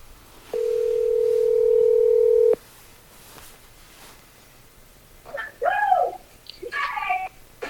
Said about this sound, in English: Should I make that phone call? Yes. Okay, we're going to make this phone call.